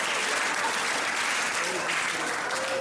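An audience breaks into steady, dense applause mixed with a few cheers and whoops, sustained at an even loudness for about three seconds with no one speaking over it.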